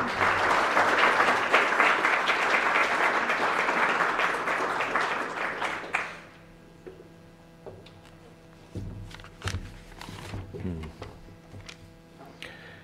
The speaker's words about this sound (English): So, Foreign Minister, welcome. We're delighted to have you here. Would you please welcome Foreign Minister Thórdarson with your warm applause.